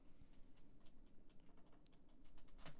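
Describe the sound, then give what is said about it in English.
Soft, irregular clicks of computer keyboard keys being pressed as Taz, a lanky 10-year-old cat, walks and sits on them. The taps are scattered and uneven, fairly quiet, with no talking. “Now you're sitting on the keyboard.”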